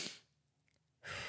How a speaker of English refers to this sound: So it's two sniffs in through your nose and then one extended breath out. And if you can do that for about a minute, I promise you, you will feel a difference.